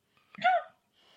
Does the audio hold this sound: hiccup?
yes